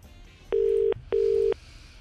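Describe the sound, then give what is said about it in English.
A steady, clear telephone ringing tone heard over the line as a radio presenter phones a listener who entered a competition: two short, even buzzes in quick succession, then quiet, with no one speaking. “No one wants to answer their phone. Always remember today. Two more rings.”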